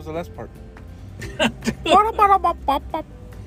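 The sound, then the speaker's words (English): A person imitates a chicken with a quick run of short, choppy clucking bursts, loud, following a brief faint vocal sound. “Disregard this chicken.”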